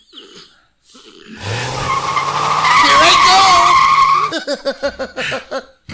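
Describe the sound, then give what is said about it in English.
A car peels away with a loud, screeching tire skid lasting a few seconds, followed by a voice speaking briefly; a short voice is also heard just before the skid. “Drive my car to the moon.”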